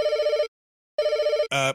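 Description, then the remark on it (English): A telephone rings twice, each ring a steady half-second electronic trill separated by a pause, followed by a short, brighter burst of tone. No voices, fairly loud. “Speaking of phone calls, why don't we listen to one?”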